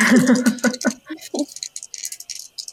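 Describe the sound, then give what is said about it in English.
Dice clatter across a tabletop in a quick run of light, irregular clicks that taper off, following a brief burst of voice at the start. “your dice are like, I only like this number now.”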